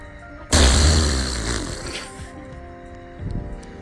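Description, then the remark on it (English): A loud, blaring raspberry made with the mouth imitates a fart that wakes a person from deep sleep in the night. It is one sustained burst of about a second and a half that trails off into quieter background noise. “It's the fart that awakens you from your sleep.”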